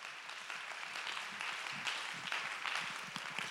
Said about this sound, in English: Let's clap our hands and give God praise for that.